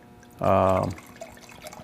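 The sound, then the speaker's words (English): A drink is poured into a glass in one short, loud burst of about half a second, a bright liquid gurgle with a steady tone, followed by quiet room noise. “Loyalty in your glass. Yeah, let me get a little more.”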